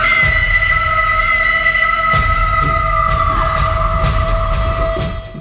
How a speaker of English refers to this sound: Oh my God. The scream is so good. Oh, I love just like a wild scream into the void. And she's in a convertible, so it's like everyone heard that.